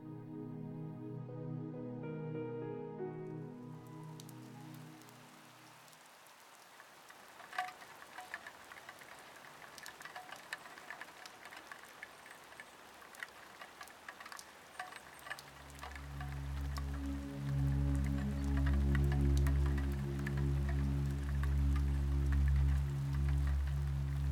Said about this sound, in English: A delicate rain pattering on the glass gently eases Lily into wakefulness